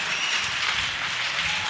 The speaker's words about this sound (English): Come on, give the Lord a big clap offering.